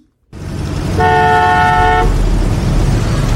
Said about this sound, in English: But the guy that is following her is blocked, and he starts to honk.